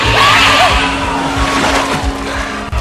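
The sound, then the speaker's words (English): Shrill, squealing shrieks of eels in a film scene rise and bend over a loud, churning roar, a dense and sustained creature effect that stays intense throughout. “They always grow louder when they're about to feed on human flesh.”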